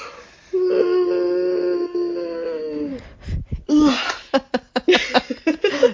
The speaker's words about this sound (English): Big yawn.